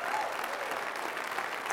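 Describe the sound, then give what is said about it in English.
An audience claps their hands in praise of Jesus, a dense, steady wash of many overlapping claps at an even loudness with no single beat standing out. “If you believe that, can you clap your hands and give him praise?”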